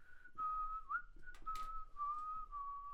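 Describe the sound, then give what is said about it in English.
A single melodic whistle coming from a pipe carries a slow tune, holding long sustained notes with small pitch slides, moderately loud and slightly reverberant; no talking. “looking around, you hear some whistling coming from the pipe that you had just come and explored.”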